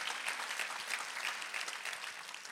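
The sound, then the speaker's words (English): An audience at a church sermon claps for their faith in Jesus, steadily and continuously, a dense wash of many hands with no voices over it, holding an even level before easing off slightly at the end. “Clap if you got some faith today in Jesus' name.”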